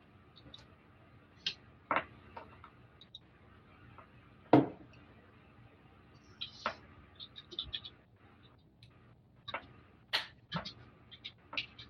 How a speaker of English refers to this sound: I'm going to consult my yarrow sticks again.